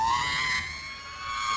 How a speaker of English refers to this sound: You need to have some little like, soundboard sound effects, like a pew sound or something. Yeah. Womp, womp. Howie scream, wah.